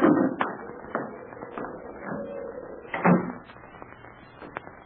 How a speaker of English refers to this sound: Hey, the door blew open. I'll shut it.